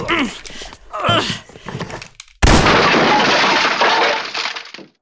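Raised voices give way to a sudden, loud crash as a wooden chair is smashed apart, its splintering clatter sustained for a couple of seconds before cutting off.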